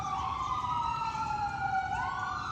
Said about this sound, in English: So I want to tell you today, once these sirens stop, which they probably never will, I love you, and God loves you, and your purpose is clear.